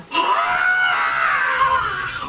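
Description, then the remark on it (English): A person imitating a winged creature voices a long, strained, unearthly howl, a sustained high screech that wavers for about two seconds, loud with no other talk. “Okay, it lets out this unearthly howl.”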